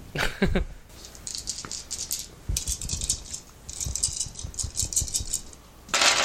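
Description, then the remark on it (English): A handful of dice rattles and clatters across a hard tabletop in several uneven bursts of clicking, with short pauses between tumbles and no voices. “He needs another die.”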